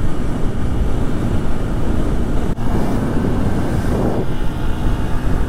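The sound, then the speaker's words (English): A dual-sport XR150 motorcycle rides at speed in busier traffic on higher speed limit roads in Asheville, North Carolina, its engine a loud, steady low drone mixed with rushing wind noise, broken by one brief dip about halfway through, as if during a gear change. “but I thought this would be a really good opportunity to show you guys what Asheville, North Carolina looks like and to get into some busier traffic on some higher speed limit roads and show you how the XR150 does.”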